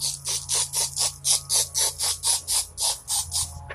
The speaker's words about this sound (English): I'm spraying again, I'm sorry. Oops, I dropped it.